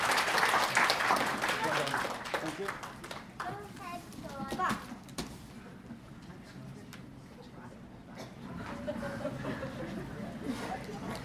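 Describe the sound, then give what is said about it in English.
A crowd applauds volunteers as they go back down after coming up, in a dense, crackling round of applause that is loudest at the start and gradually thins out, with children's voices and chatter mixed in throughout. “Can everyone give them a round of applause as we go back down?”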